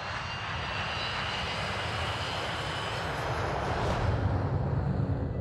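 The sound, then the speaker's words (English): The engines of a Tupolev 154 jet airliner, Bashkirian Airlines Flight 2937, roar steadily and loudly as it leaves Moscow just before 11 in the evening: a dense continuous rumble with a faint high whine on top, swelling slightly near the end. “Just before 11 that evening, Bashkirian Airlines Flight 2937 leaves Moscow. The plane is a Tupolev 154.”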